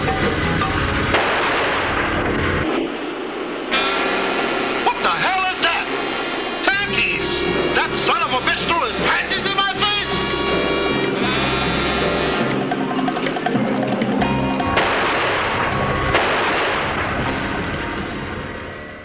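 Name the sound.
gunfire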